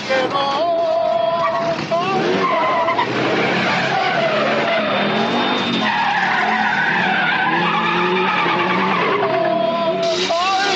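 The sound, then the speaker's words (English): A truck full of chickens skids in a long, loud, wavering screech that rises and falls in pitch, with engine roar underneath and scattered shouting mixed in for about ten seconds, as it crashes into the Buster Burger restaurant. “I would say definitely stereotypical Mexican migrant workers with a truck full of chickens who Druten decides to play chicken with, crashing them into the Buster Burger restaurant.”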